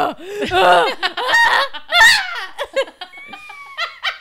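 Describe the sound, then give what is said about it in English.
A person loudly mimics seagulls, letting out a rapid string of shrill, swooping squawks, broken up by bursts of laughter. “goes full seagull.”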